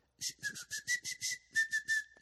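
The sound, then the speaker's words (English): A person whistles with lips stretched in a smile (the smile whistle technique), producing a steady tone broken into about a dozen quick breathy pulses, with airy hiss around each note and no talking. “There is the smile and whistle, which I can smile and whistle.”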